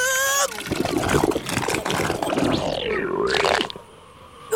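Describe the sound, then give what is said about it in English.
Water trickles and splashes from a leak in a steady, dense stream for several seconds after the character Crocodile drinks a full barrel of water, fairly loud, joined briefly by a rising and falling whistle-like tone before it cuts off. “Oh no! A leak!”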